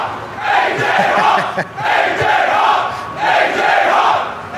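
A live crowd in Texas cheers loudly for the introduction of A.J. Hawk, its roar of shouts and whoops swelling in three surging waves with brief dips between them, sustained and dense throughout.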